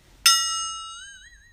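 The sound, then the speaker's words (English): A single bell struck once to mark the end of a break, its bright, clear tone ringing out and slowly fading with a slight wavering shimmer, heard alone without any talking. “So that bell is, we're back on the podcast.”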